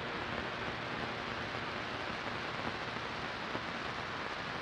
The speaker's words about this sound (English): In the cold drizzle of dawn, I saw the 4 dozen forms of black carapace armor rise up over the city gates and fly into town.